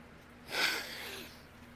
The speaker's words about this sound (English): Listen to that sniffle he does. It's coming from his mouth. It's not coming from his snot. If you're going to have that much noise coming from a sniffle, you're going to be crying way more.